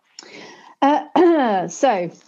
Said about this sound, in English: Oh, this has to be important. She's clearing her throat.